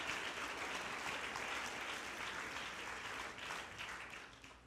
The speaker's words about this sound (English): Yeah, go ahead and clap. You ought to be happy.